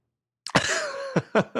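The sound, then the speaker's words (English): A short fit of coughing: a harsh first cough trailing into a strained, rasping breath, then three quick dry coughs in succession, fairly loud with no talking. “I have a little bit of a cough. I apologize.”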